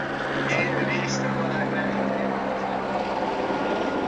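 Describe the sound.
A helicopter drones loudly and steadily, its low engine hum and broad rotor roar holding constant throughout, with muffled voices faintly mixed underneath.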